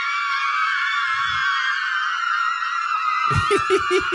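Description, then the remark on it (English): A loud, sustained high-pitched scream of fans, played as a sound effect from an iPad, fills the whole stretch, turning into shrill, choppy shrieks and cackling bursts near the end, with a brief low rumble partway through. “It's probably too long, but that's fan screaming. It's just on my iPad.”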